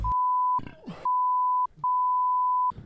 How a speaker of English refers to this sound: Oh, you can't say things like that. You can't. We got to beep. We always have to beep you out.